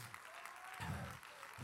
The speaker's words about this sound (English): You need to clap your hands on that one.